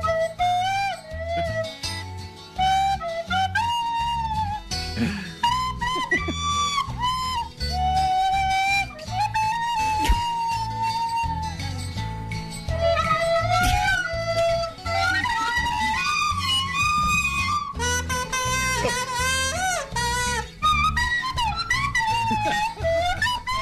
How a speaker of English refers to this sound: There's a slide whistle in there.